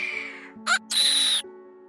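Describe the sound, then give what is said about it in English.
A harsh, shrill bird screech in two loud bursts: a short squawk followed by a longer, strained shriek, with no talking over it. “So the bird would give a terrible screech.”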